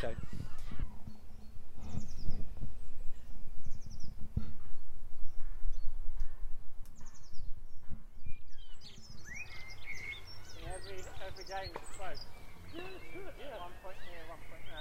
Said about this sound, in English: Okay, I'm going to tell you the reason I think it's a dunnock. Dunnock is a small bird, a bit like size of a sparrow. It's brown and grey, and they tend to hop around on the floor a lot